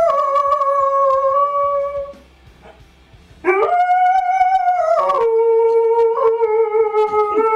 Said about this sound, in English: Huskies like to sing, but this is Opera Dog.